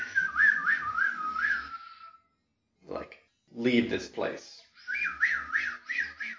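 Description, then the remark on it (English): Wavering, off-key whistling blown through the knuckles in short warbling bursts, fairly loud, breaking off for a brief spoken phrase before the shaky whistle resumes. “So there's discordant whistle.”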